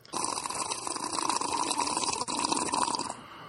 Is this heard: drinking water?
yes